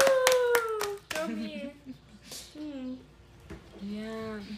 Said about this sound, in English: Very nice. Very nice. Round of applause.